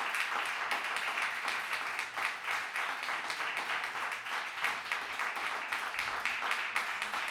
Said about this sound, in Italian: Questo è l'applauso del Monk.